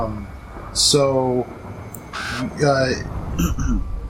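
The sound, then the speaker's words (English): A raven perched atop a carved stone gives two loud, harsh caws about a second and a half apart, over steady outdoor background noise with a few brief rustling bursts. “Are there crows still around? Yes, well, ravens.”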